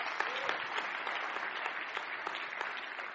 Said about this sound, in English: One thing, we need to clap better. We just, you know, just do that.